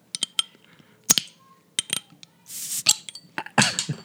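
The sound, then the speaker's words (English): Sharp glass clinks and taps from a glass bottle of Jarritos mandarin-flavored soda being handled, then a short hissing burst as the cap comes off, followed by more clatter and a second fizzy rush. “Wait, before we move on then, let me open this bottle of Jarritos. It is mandarin flavored natural flavor soda with real sugar.”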